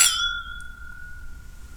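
A single bright clink of whiskey glasses touching in a toast, followed by a clear ringing tone that sustains and slowly fades over a second and a half, with faint low background rumble.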